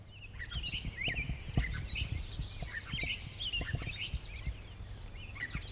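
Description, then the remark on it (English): A clay-colored sparrow's flat, insect-like buzzes sound amid a busy chorus of other chirping birds, over steady low knocking and rumbling noise, recorded at Dinosaur. No one speaks. “Oh, clay-colored sparrow.”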